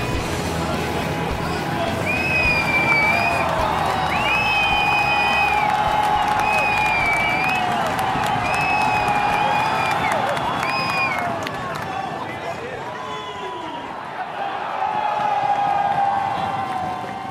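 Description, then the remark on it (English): A loud, enthusiastic crowd cheers continuously in a dense wall of voices at the fan zone of the cycling World Championships in the centre of Bruges, with shrill whistle-like tones rising above it, easing slightly briefly before swelling again near the end. “what was that very enthusiastic crowd noise?”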